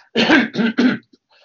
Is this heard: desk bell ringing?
no